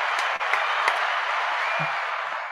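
A crowd applauds steadily, dense overlapping hand claps forming a continuous, fairly loud wash of noise with a few sharper individual claps standing out, and no talking.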